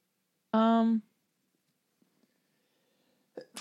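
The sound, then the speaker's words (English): A single loud, sharply voiced sneeze bursts out and ends within half a second, followed by near silence with a few faint clicks before a voice starts at the very end. “Bless you.”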